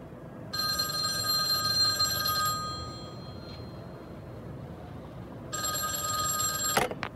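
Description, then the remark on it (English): A home telephone bell rings twice in long, bright bursts separated by a pause, clear over a low background hum, with a faint click near the end. “But I wasn't home long before the phone rang.”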